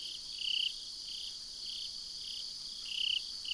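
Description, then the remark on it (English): Two Japanese burrowing crickets, an introduced species, hidden under leaves, trill in rapid, repeated bursts, high-pitched and steady, over a constant background of fainter insect buzzing. No voices are present. “Well, a short distance away, also hidden under leaves, two Japanese burrowing crickets giving rapidly repeated trills.”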